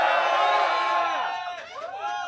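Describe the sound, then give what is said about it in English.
A crowd of Philip Rivers fans cheers and whoops outdoors at Los Angeles Chargers training camp in Costa Mesa, Orange County, California. Many overlapping voices rise and fall together in a dense, steady roar for a couple of seconds. “We have a nice crowd of Philip Rivers fans here in Orange County.”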